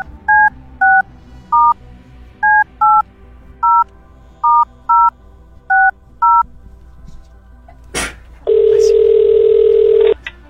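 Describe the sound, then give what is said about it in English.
A run of about eleven short, clear telephone keypad beeps, each a two-note electronic tone, dialed at an uneven pace. A sharp click follows, then a steady, humming phone tone for two seconds. “How do we make the phone go?”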